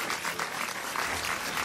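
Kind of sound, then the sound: crowd, applause sound effect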